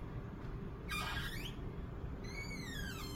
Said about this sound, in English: And this is a very heavy wooden globe, but just listen to the sound that it makes when it moves.